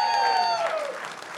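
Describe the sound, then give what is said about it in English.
An audience claps in a dense, steady wash of applause that fades slightly, with a high sustained tone gliding downward over it, like a whistle from the crowd. “Now, that hand clap is for her, because how many know she's a saint to be married to me for 30?”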